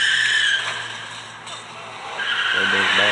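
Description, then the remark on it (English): Car tires squeal loudly as a vehicle peels away after running over a man, a sustained high screech over a revving engine rumble, continuous for about three seconds, with voices faintly underneath. “Roddy Piper was hit by a car.”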